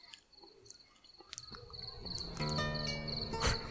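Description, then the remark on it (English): Campfire ambience with a steady, high-pitched cricket chirp running throughout, scattered crackling pops, and a fuller layer of sustained tones swelling in during the second half. “Oh, you want me to turn up the campfire sounds?”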